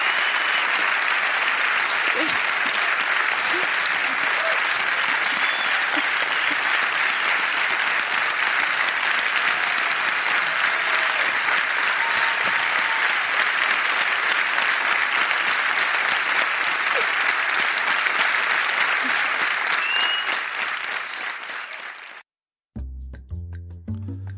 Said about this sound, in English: All right, those applause are well deserved.